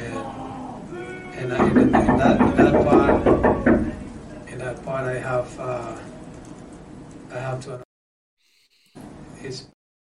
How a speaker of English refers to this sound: You heard like people banging on glass and yelling, asshole, boo, and like booing him. Like they're booing their own coach at the post-game press conference after they won the U.S. Open Cup last year.